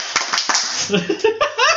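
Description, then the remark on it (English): A few sharp hand claps ring out over a noisy wash, then excited voices and laughter take over the rest of the moment. “You clapped.”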